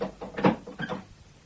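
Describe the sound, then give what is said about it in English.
A few heavy wooden knocks and scrapes as a door in a castle is shut and a bolt slides home, with the loudest clunk in the middle and a fading rattle after. “Bolt the door fast, my son.”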